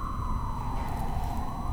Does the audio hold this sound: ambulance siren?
yes